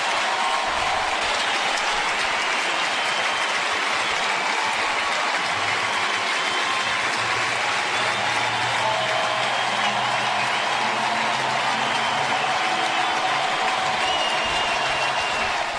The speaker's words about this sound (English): Nothing quite like an ovation from the Busch Stadium crowd. That was October 2nd, 2016.